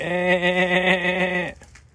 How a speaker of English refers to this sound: Let's even get these goats to make some noise. Make some noise for the goats.